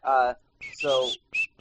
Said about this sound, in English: And what are you whistling? The Super Mario Brothers theme for that game.